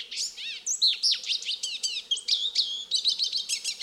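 A lesser goldfinch, one of several small birds landed in a thicket beside a small canyon stream, pours out an excited, high-pitched song, a rapid, unbroken jumble of twitters, wheezy notes, whistles and trills, clear with no other sounds.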